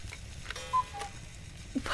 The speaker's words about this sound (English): What is that? Oh, that? That would be our Christmas cuckoo clock. Care to see it? It's quite special.